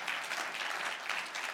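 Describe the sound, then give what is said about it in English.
A church audience applauds steadily, many hands clapping together in a dense, continuous wash of sound, with no voices standing out. “And you all clapped at that. You can clap again.”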